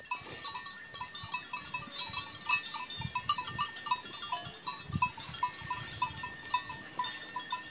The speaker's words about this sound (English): That's up above Brixen. Here's a little sound of the munching sheep.